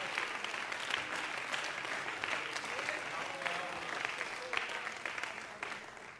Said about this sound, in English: Somebody clap your hands to the Lord and give Him praise.